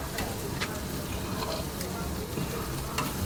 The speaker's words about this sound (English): We out here, man, grilling, man, trying to get some stuff ready, prep for the session, get some good chicken there. Summertime vibe, you feel me?